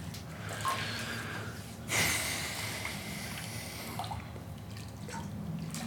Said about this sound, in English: Whoa, what? Careful. You're splashing water all over the floor